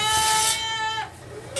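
A single high, drawn-out bleat from a bottle-fed baby goat on a family farm, lasting about a second, clear, with no talking around it.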